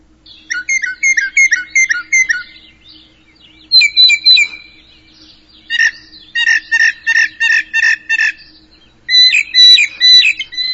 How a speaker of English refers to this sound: All right, that is... Let's stop him now. He's going to keep singing. That's a northern mockingbird, folks.